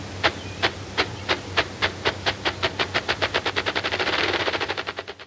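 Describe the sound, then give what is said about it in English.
A grouse's gular sac booming display: a series of about two dozen thumping pulses that steadily speed up into a rapid roll, over a low steady drone, with no voices. “Listen to this grouse and the sound the gular sac makes.”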